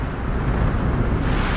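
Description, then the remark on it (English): Rough sea waves churn and crash against a sailing ship in a continuous, loud roar, with heavy low rumbling and gusty wind buffeting throughout, no voices present. “Getting rough, boys. The seas are getting rough.”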